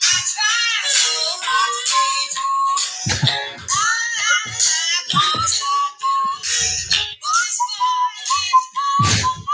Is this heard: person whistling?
yes